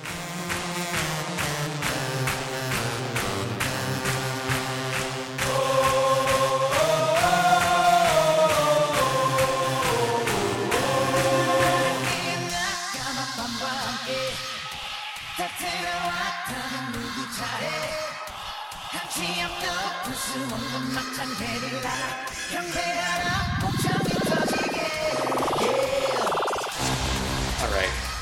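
An energetic K-pop boy band song from 2015 plays at full volume, with punchy beats, layered male vocals and synth lines, building through shifting sections and a rising sweep near the end.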